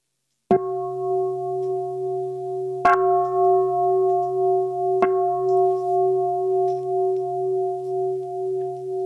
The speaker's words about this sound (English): May the sound of this bell ring throughout the universe, awakening all beings to joy and equanimity.